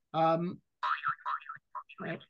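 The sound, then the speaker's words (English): A short, loud geek trivia alert sound effect: a buzzy, twangy boing-like tone, then a quick run of warbling, chirpy bleeps that rise and fall in pitch before cutting off. “If you know that noise, that is a geek trivia alert.”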